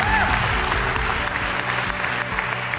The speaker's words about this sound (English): How about giving that little girl another round of applause?